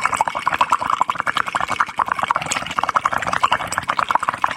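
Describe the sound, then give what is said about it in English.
Steady, rapid bubbling as air is blown through a straw into water, a fairly loud gurgling burble that continues without pause for several seconds. “It's blowing in a straw in water.”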